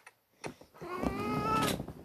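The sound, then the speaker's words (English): A cat lets out one long, drawn-out meow, rising and sustained for nearly a second, after a few soft taps and rustles. “This is my cat.”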